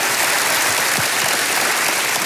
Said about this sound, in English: He give a big round of applause.